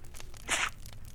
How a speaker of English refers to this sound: What was that? What? That sound. It was a sneeze. Someone's watching us.